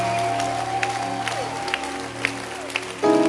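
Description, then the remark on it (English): An audience at a church service claps steadily for fathers in a dense wash of applause over sustained keyboard tones, with a few sharper claps standing out, until a louder held chord enters near the end. “One last round of applause for fathers. Clap your hands for them.”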